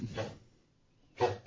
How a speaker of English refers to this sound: You are not allowed to die, dog. Poor guy. Yeah. So, I've never heard a dog with a cold before.